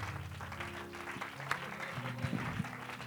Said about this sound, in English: Yeah, let's give the Lord a hand clap of praise this evening.